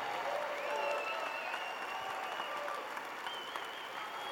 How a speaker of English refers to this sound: Come on, let's take a praise break. Everybody stand up. Let's praise God right now. I don't care what you're going through right now. Lift up your hands. Clap your hands.